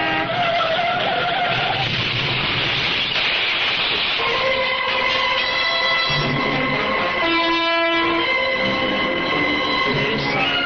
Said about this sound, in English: Clarissa, was that the sound of a car crash?